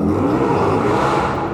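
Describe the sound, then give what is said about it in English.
A car engine revs loudly on a city street, a thick, rumbling roar that holds steady and fills the whole moment with no voices over it. “Sorry, listeners. them's the brakes in the city.”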